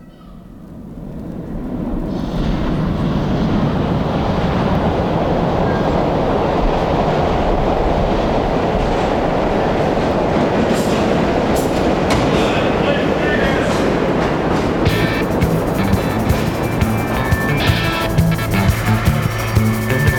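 A train rolls steadily along the rails, its loud, continuous rumble swelling in over the first couple of seconds, with a dense rhythmic clatter of wheels running throughout.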